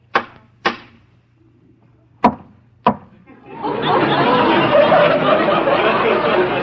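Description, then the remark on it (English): A captain's tobacco pipe is rapped sharply against something to knock out tobacco, the knocks making an echo: four crisp, hard knocks in two pairs with pauses between, then a steady, loud rushing noise takes over. “Well, if you don't mind, I'll smoke my pipe. What's a captain without a pipe? I'll just knock out some of this tobacco.”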